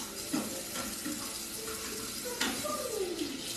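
Water runs steadily from a tap while someone cleans up, a continuous hiss with a couple of small clinks and clatters of dishes being handled under the stream.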